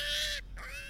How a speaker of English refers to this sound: How long is this sound? That's a pig sound, David. Yeah. Well, it does go on for 21 more seconds, but I've muted that for you, okay.